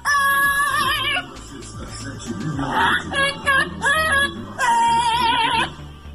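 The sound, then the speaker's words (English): A parrot mimics a popular pop song, singing in high, warbling phrases with wavering held notes, three bursts with short pauses between, fairly loud over a low, steady backing. “the parrot sounds just like her”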